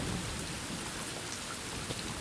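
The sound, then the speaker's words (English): Steady rain drums on a roof in a dense, even hiss with a low rumbling undertone, continuous, with no voices. “Sound of rain on roof, very soothing.”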